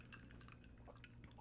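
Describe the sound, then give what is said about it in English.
Small wet drips and a light splash as a lime is squeezed into a cocktail in a glass, with a faint clink or two, fairly quiet over a steady low background hum. “I'm going to squeeze my lime in mine.”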